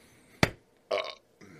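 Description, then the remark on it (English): A loud burp after drinking hazy beers: a sharp abrupt burst, then a longer raspy belch and a short trailing one, with brief silences between and no talking. “Oh, they bring the burps.”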